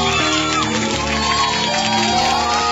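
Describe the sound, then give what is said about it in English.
A studio audience cheers and whoops loudly, a dense wash of many shouting voices with a possible patter of clapping mixed in, sustained at a steady level throughout. “You can't say that the audience haven't started clapping yet.”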